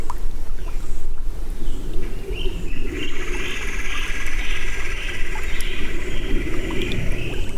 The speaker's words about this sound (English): If you listen very closely, you can hear what sounds like water dripping. It's actually tons and tons of big fat tadpoles coming up to the surface of the pond.